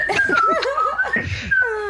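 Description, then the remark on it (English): A person whistles a short, wandering carefree tune, mimicking Hawkeye nonchalantly strolling off with his hands in his pockets, while laughter bubbles up underneath. The whistling is moderately loud and ends on a higher held whistle note. “He just does, like, the hands in the pocket whistle, walk away.”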